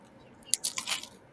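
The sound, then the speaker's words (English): A crisp crunch as someone bites into a hard-shell taco with a burnt tortilla, a quick cluster of sharp cracking bursts lasting under a second, with no talking. “You guys should have heard the crunchiness. I can show you. Hold on. Here's a crunch.”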